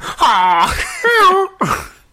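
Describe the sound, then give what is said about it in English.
A voice imitates a police bike's squeeze-horn siren: three loud, wavering wailing notes that rise and fall in pitch, each held briefly with short breaks between, and no other talk. “They have to squeeze it really slowly to get the sound of a siren.”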